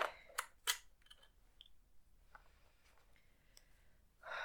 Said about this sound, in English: Okay, I'm gonna begin with this deck. Let me just shuffle here.